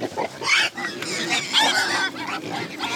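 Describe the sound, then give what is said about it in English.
A crowd of pigs grunts and squeals on a pig farm on Brannan Island along the San Joaquin River, a busy overlapping chorus of snorts and high honking cries that continues without pause, with no one talking. “He splits his time between Berkeley and a pig farm on Brannan Island along the San Joaquin River.”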